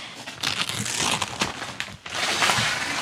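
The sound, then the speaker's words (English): Wrapping paper bought at an atelier crumples and crinkles in a steady, bright rustle for about three seconds, with sharper crackling bursts throughout and a brief lull near the end before the crinkling resumes. “Oh, another beautiful wrapping paper.”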